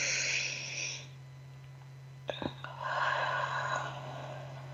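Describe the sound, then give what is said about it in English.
A slow, breathy exhale out through the mouth with pursed lips, like through a straw, in a guided breathing exercise, a soft airy hiss lasting about a second and a half, following an earlier breath in through the nose, with a low steady hum underneath. “Take a breath in through your nose, out through your mouth, like through a straw.”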